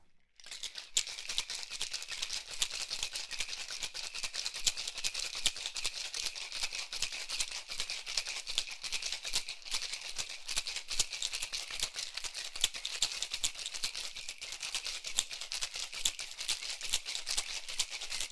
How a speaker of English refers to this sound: Got ice in there. Now let's go ahead and start shaking this up.